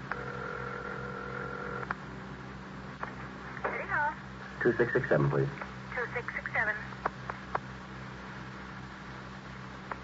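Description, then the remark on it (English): A telephone in a hallway is picked up and a steady dial tone hums briefly, then a quick run of dialing clicks and tones follows over a hissy, humming background. “I wonder if I can use your phone.”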